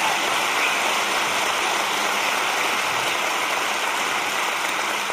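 An audience claps steadily for several seconds, the many hands blending into a dense, even roar of applause with no voices on top.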